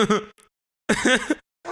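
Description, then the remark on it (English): Loud sneezes come one after another, three voiced bursts separated by short pauses, with the last one cut off at the end. “Bless you. 4 times, so many bitch. Sneezes.”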